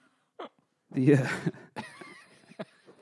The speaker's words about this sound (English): Something's bubbling in there. Yeah, you need to like cough that up or? I should. But like just suppress it down.